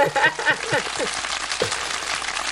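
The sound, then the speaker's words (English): A canned applause sound effect, a dense, steady wash of clapping that runs the whole time, with a voice talking over it during the first half. “Where's the applause?”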